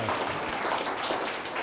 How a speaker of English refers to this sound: Come on, round of applause. That's pretty cool. Yeah.